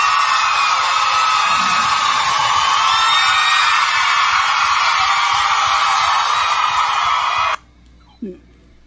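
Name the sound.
applause and cheering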